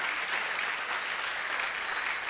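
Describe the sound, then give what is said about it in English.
A crowd claps together in a steady, dense burst of applause for Jesus, continuous hand claps with no voices standing out. “If you're clapping at me, that's a good place to clap for Jesus.”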